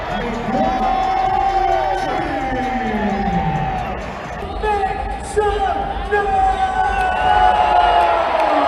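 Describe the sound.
A large indoor crowd at T-Mobile Arena roars and cheers continuously during an NBA in-season tournament game between the Lakers and New Orleans, with whoops and shouting voices rising over a dense, echoing wash of noise that stays loud throughout.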